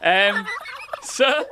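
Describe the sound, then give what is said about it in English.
A domestic cockerel crows loudly, a harsh, strained call that breaks off and then rises again in a second burst, with no talking over it. “Sorry, that's just my cockerel.”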